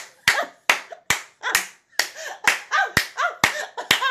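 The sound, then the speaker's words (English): An audience claps in steady unison in praise of the Lord, about ten sharp, loud claps roughly twice a second, with a murmur of voices and tonal sound carrying underneath between the beats. “Give him a hand clap, because he knows all that stuff, and he still loves his children.”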